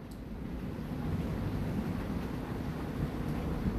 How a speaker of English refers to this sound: It is now starting to rain outside, real gently. It's lovely, my wife says.